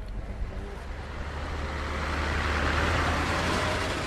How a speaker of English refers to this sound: As the last residents of Migron leave, moving trucks arrive.